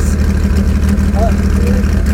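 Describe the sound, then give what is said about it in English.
A hot rod car engine idles steadily while being warmed up, a continuous low, throbbing rumble that holds an even level throughout, with a faint higher whine briefly rising over it. “That's where he spends 20 minutes warming it up, trying to get the idle sorted.”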